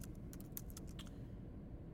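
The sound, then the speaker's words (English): Rapid, irregular clicking of fingers typing on a computer keyboard for just over a second as someone practices typing, then stopping, with a low steady rumble underneath and no one speaking. “I'm just practicing typing.”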